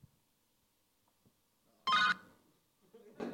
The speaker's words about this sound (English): Is that Michael Caine's phone?